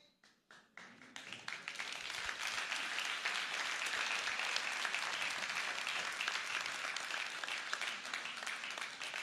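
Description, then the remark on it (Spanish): An audience breaks into applause, starting with a few scattered claps that quickly swell into steady, dense clapping from a large crowd, sustained evenly for several seconds. “Un buen aplauso de golf, ¿verdad?”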